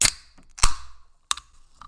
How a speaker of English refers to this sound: Now, I got to say, like, I never crack cans as good as I do on this microphone. Yeah? Like, you really, like, put the effort into it.